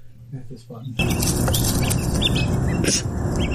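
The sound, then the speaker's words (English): After a quiet second, two birds burst into harsh squawks, trading calls back and forth over a loud, dense background rush that stays steady until the end. “Two of them. I'm not going to say that. And they squawk back and forth.”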